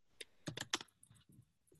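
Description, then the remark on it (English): Someone types an answer on a computer keyboard, with a quick, uneven run of sharp key clicks and taps, fairly quiet, with no talking. “No, well, I was just actually typing an answer.”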